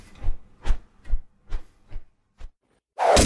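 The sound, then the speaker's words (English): A string of soft, evenly spaced chugging thumps gives way to a sudden loud, hissing whoosh of an arrow cutting in and striking a person's body beside two earlier arrows at the very end, with no voices. “Another arrow pierced me next to the other two.”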